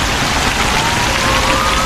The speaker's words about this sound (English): And lots of traffic here. But I like it, it's a good vibe.